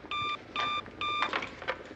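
A telephone, the Bat phone, rings in three quick electronic bursts, each a bright warbling tone with steady harmonics, fairly loud, with a faint clatter of background noise between rings.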